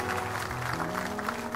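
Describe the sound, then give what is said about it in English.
A church audience gives a clap offering together, a dense, steady wash of clapping with sustained organ-like tones humming underneath. “Would you give these brothers and sisters a great big clap offering?”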